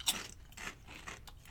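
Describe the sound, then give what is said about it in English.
Crisp crunching of a truffle-flavored kettle potato chip: a sharp bite followed by several brittle chewing crunches in an uneven rhythm, with no talking. “Good crunch.”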